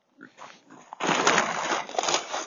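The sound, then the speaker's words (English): Soft grunting gives way to a sudden broad crash as a feed bag tips over, followed by about a second and a half of loud crinkling, rustling and crunching. “Feed bag just fell over, but then we've got the chickens.”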